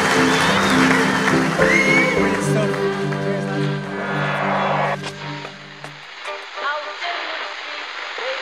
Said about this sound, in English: Round of applause, please, for Shane Horgan and Andrew Trimble. You can stay there.